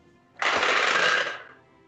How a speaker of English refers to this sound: And then let me just roll those 3d10 again.